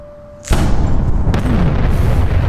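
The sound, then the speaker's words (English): A sudden, powerful boom bursts in after a quiet lead-in, then swells into a sustained, rumbling roar of a large explosion of vaporized gasoline in a vat, sending up orange-yellow flame, that stays loud through the end, with no voices present. “You have this, like, it's almost like a two-stage explosion where you have the initial burst of the thing you created, and the flume of just orange yellow flame just coming gushing up from the vat of gasoline that you've vaporized”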